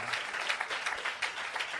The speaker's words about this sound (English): Yeah, we can start this thing. Joyous response. Round of applause.